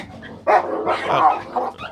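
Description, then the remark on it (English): Several dogs bark and snarl in a quick, overlapping fight, a burst of harsh yips and growls that rises and falls over about two seconds. “This is the dog's now fighting.”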